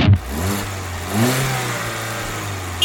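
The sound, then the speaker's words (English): A cop's illegally parked car engine revs, its low growl rising in pitch around the middle before settling into a steady idle-like rumble, with no voices present. “Dodgy McCharger, a cop's illegally parked car that's running for the open seat on New York City Council District 10”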